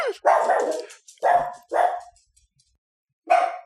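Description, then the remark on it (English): A dog named Charlie barks loudly, four sharp barks: two quick ones, a pause, another, then a final bark after a brief silence. No one speaks. “Talk over his barking.”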